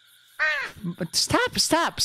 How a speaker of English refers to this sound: Stop. I don't like the crow. I really don't... Is the crow or a ray? I don't even... I don't like the bird! The bird! What is this?